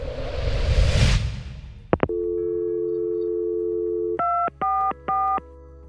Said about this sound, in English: And as soon as I got a dial tone, I called 911.